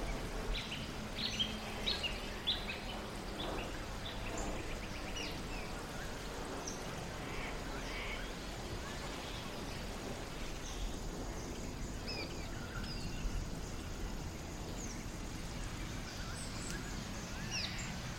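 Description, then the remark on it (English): Scattered small bird chirps, quick and fairly faint, flicker from undergrowth over a steady low outdoor rumble, busiest in the first few seconds and then sparser; birds hidden in the underbrush settling in for the evening at twilight in Walleye Creek Regional Park. “You can hear the rustle and chirp of birds hidden in the underbrush as they settle in for the evening.”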